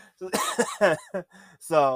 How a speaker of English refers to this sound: That's not a COVID cough. That is just a cough.